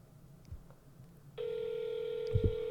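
After a second of quiet room noise, a single steady telephone ringback tone from a phone call to McDonald's starts and holds loud and continuous to the end, with a couple of soft low thumps underneath.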